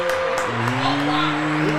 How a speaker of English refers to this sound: Round of applause for them, y'all.